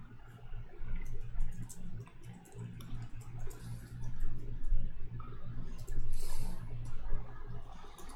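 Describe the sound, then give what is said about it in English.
Irregular bursts of light computer keyboard clicks tap away over a steady low electrical hum, with no one speaking. “Nothing's typing. Oh, wrong window.”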